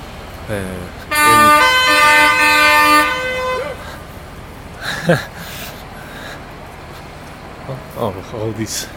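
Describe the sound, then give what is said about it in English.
A cement truck with a cement drum on the back lets out one long, loud, brassy horn blast lasting a few seconds, followed by quieter traffic rumble and brief indistinct voices. “These are cement trucks with big, I guess, cement drums on the back”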